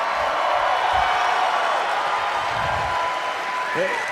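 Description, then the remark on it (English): A large crowd applauds steadily throughout, a dense wash of clapping with cheering voices mixed in and a brief rising whoop near the end. “For the folks in the creature shop, not just applause and cheering, could everybody make their best Wookiee roar for those guys right now?”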